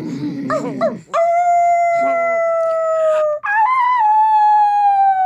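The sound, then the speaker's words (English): People mimic wolf howls with their voices: after a brief burst of short vocal sounds, two long, steady, high-pitched howls ring out loud, the second slightly rising before holding. “Let's try and sound as wolfish as we can.”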